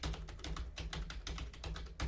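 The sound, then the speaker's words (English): Rapid typing on a computer keyboard, a dense, steady patter of light clicking keystrokes, with no voices. “But that's a keyboard from a computer.”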